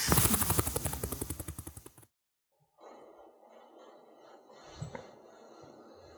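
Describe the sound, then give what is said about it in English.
A voice imitates a helicopter with loud, rapid rhythmic chopping bursts that fade out. After a short silence, a softer, steady breathy hiss mimics waves washing in, with one brief swell near the end. “God, I'm at the beach. And the waves are crashing in. And all of a sudden, and a helicopter.”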